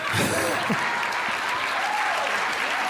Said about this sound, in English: I appreciate those six claps.